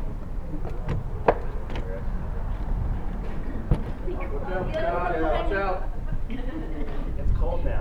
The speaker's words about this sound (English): maybe open a door in here. Is that too bright to open that? It's probably going to slam shut on us. But. Okay. Here it comes, yeah. Maybe I should open the other door then, if this one's going to shut.